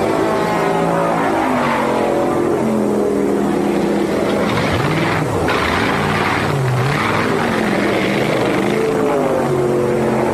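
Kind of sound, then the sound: vehicle, race car engine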